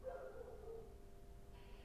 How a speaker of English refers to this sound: There's a dog howling in the night.